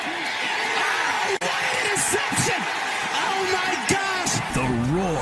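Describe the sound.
A large college football stadium crowd roars and cheers continuously, a dense wash of many overlapping voices with scattered shouts and whoops rising above the steady din.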